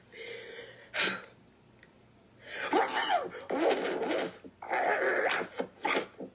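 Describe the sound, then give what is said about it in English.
A person who is sick imitates an aggressive dog in a barking competition voice, letting out several harsh, growling barks in rough bursts, loud, with brief pauses between them. “I am currently sick right now, but this is my barking competition voice.”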